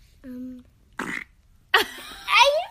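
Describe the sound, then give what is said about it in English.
Three short fart noises in a row, a low buzzy toot, then a brief sputter, then a longer squeaky, rippling one, fairly loud with quiet gaps between. “I farted.”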